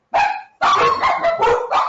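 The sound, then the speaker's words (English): Dogs bark loudly behind a door in high, sharp yaps: a single bark, a brief pause, then an unbroken run of overlapping barks. No one speaks. “I promise you, listeners, I am going to get a sign on that door that says, on the air. Okay? So we'll just let them bark and then we'll finish.”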